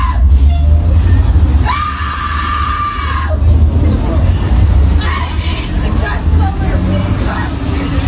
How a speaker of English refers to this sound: All she had to do is put on her mask. Wouldn't put on her mask. She's screaming, someone give me a ride.